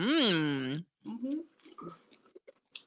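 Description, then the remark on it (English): Wet chewing of cinnamon kettle corn popcorn, a few soft crunchy clicks, following a drawn-out voiced hum and some mumbled vocal sounds from the person eating. “I could definitely do it in a popcorn form.”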